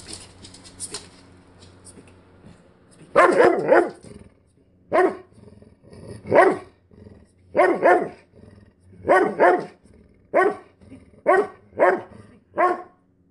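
After a few quiet seconds, a dog barks loudly, about eight sharp barks in a steady, evenly spaced rhythm, with no talking.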